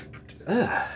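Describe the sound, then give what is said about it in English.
A single sharp sneeze bursts out suddenly and fairly loud, with a brief breathy lead-in before it and no talking over it. “Bless you.”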